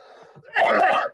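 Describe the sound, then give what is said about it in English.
A single loud cough with a wet, phlegmy quality, bursting out after a faint breathy lead-in and lasting about half a second, from a person asked to cough who still has a cough from a cold or COVID. “Can you cough for us real quick?”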